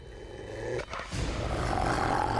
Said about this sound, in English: Growl. Here he is. Whatever you do, don't run.